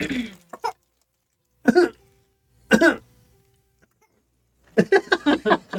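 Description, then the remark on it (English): A toddler gives a few short, forced fake coughs to get his mother's attention, with pauses between them, ending in a quicker string of coughy bursts, with no talking over them. “Fake coughs to get mommy's attention because he knows it's going to freak me out.”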